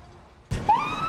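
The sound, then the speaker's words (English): A police car siren abruptly starts up and begins its rising wail, loud, over a low background rumble in a brief burst, as police vehicles search for a suspect in the countryside of Central California's wine country. “we have watched as dozens upon dozens of police cars push through this perimeter into the countryside behind me”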